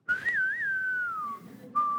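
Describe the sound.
A lone whistled Western showdown tune, a slow wavering melody with a long sliding note, a brief pause, then one more sustained note, clear with no talking.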